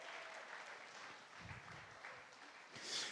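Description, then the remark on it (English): Audience applause at a church gathering, a steady dense patter of many hands clapping, swelling slightly louder toward the end. “Yeah, you can give him a round of applause.”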